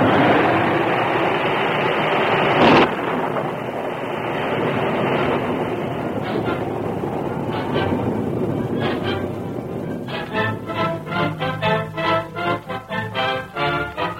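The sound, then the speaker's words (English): A loud, steady roar of tornado wind rushes on without a break, with one sharp crack early on. Toward the end it breaks into rapid, pulsing bursts. “As swiftly as it had come, the tornado passed, to be followed by a light rain.”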